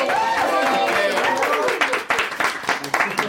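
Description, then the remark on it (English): A live audience at a packed show applauds loudly, with dense clapping mixed with whoops and cheering voices, then thins out into scattered, uneven claps toward the end. “First of all, I want everybody to give a round of applause so they know we do actually have an audience tonight.”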